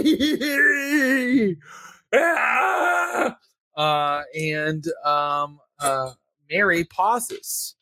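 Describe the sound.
During a tabletop role-playing game, a person voices a creature screaming for help in an anguished female voice: a long, wavering, strained cry, then a string of shorter, choppy shrieks and groans, loud and high-pitched, with brief gaps between bursts.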